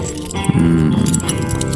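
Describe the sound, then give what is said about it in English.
A bunch of keys is rubbed together in a continuous jingling, scraping clatter, fairly loud, with a short low hum partway through and no talking. “Because now I'm rubbing these keys.”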